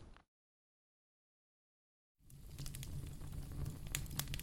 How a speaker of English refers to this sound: Philip Kraft watched the fire in the fireplace as it consumed the logs. The dance of the flame mesmerized him. He found himself attracted to the entropy of it. Order reduced to heat and chaos.